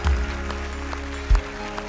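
An audience claps for people making a decision for Christ, over a steady, sustained musical tone, with sharp claps rising from a soft wash of applause at a loose, roughly even rhythm. Nobody speaks.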